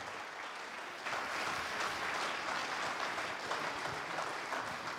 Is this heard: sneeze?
no